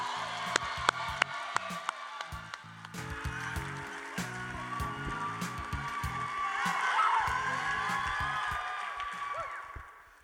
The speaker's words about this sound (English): Applaud the poet.